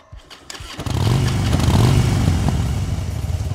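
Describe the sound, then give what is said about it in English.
A few mechanical clicks, then a California Highway Patrol police motorcycle engine fires up and revs into a loud, steady throaty rumble, its pitch rising and dipping slightly as it idles on. “California Highway Patrol motorcycle officers I. Alexander Nash and Hank Punch Poncherello cruise the freeways of Los Angeles, solve crimes, and help people in trouble in this hot cop show.”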